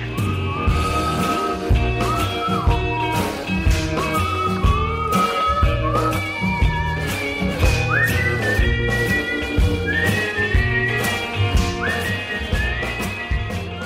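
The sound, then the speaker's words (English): A whistled melody with sliding notes rides over a full band song, backed by steady drums and a bouncing bass line, clear and upfront throughout. “There's a few other notable pieces of whistling, so more whistling, please.”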